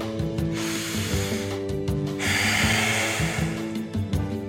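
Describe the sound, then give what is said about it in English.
Loud, deliberate breaths drawn in and pushed out, a rushing airy sound with a steady low hum beneath it and no talking. “Yeah, it's breathing.”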